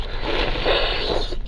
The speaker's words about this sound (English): Anyway, okay, so I'm filling up, putting the ice in, and I'm going to proceed to stir said coffee with said ice in it. Cools it down really nicely, and I can take a sip.